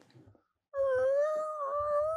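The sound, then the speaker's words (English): A voice imitates a creaking door with a long, loud, wavering drawn-out tone lasting over a second, after a short burst of faint noise. “If you crack that door even the slightest bit, I don't know the door was cracked.”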